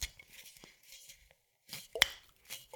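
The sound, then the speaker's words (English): A reddish-brown plastic screw cap twisting and cracking open on a spirits bottle, its seal breaking off: a few scratchy crackles, then a sharp snap followed by brief rustling, fairly quiet with no talking. “The bottle is capped with a reddish-brown plastic screw cap. Okay, let's go ahead and give it a try. I'm going to open the bottle.”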